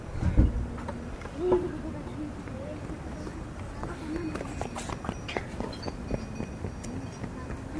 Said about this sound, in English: I remember stopping for a rest on a bench outside a tea shop where some young children and an adult were singing something out of a school book, and mountain goat kids were gambolling around, jumping and baying.